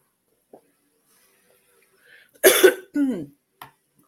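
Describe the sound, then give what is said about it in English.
A sharp, raspy cough bursts out, followed by a voiced, gravelly throat clearing that slides down in pitch, with a brief faint rasp after. No one speaks. “I have a frog up in my throat.”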